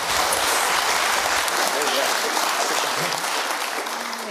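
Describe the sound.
An audience breaks into a steady round of applause, dense and loud, clapping continuously from start to finish with faint voices mixed in and a slight easing toward the end.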